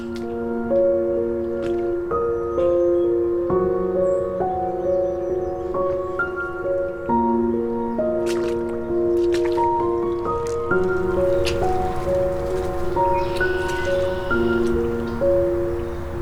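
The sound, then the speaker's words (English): Rubber boots slosh and squelch through water a few inches deep in a steady series of wet, squishy steps, with tonal outdoor sounds humming in the background and no one talking. “Very glad I brought rubber boots. Water here is a few inches deep.”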